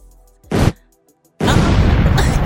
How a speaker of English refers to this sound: All right. Explosion.